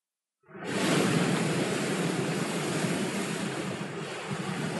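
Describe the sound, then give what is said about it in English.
Giant ocean waves surge in a loud, continuous roar, tossing a small ship back and forth in thick fog; the roar rises quickly after a brief silence and churns steadily throughout, with no voices present. “The giant waves tossed the little ship back and forth.”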